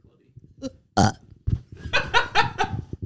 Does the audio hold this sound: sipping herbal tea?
no